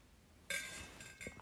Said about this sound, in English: I need to get a sip of water, so hear the clanking of my water. Momentary break.